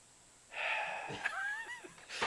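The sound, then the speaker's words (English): A voice imitates heavy mouth breathing: one long, wheezy, drawn-out breath with a whistling, slightly rising tone, fairly loud, with no words spoken. “It's like mouth breathing.”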